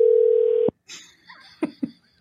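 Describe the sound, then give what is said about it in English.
A phone call rings out unanswered with one steady electronic tone that lasts under a second and stops abruptly. Muffled, indistinct voices and brief laughter follow at a moderate level. “Oh, he's not going to answer.”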